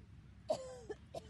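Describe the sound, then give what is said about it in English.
A few short, sputtering coughs in quick succession from someone who swallowed something down the wrong pipe, fairly soft, with no talking. “That I'm coughing that I Wrong have... Wrong pipe.”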